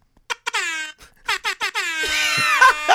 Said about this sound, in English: The Jamaican air horn will never get old. I got an app, and like, I love it, and it's got some cool sound effects on it, but I mean, that's always funny to me.